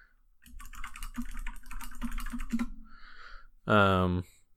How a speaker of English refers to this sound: I'll Google it with my clicky keyboard.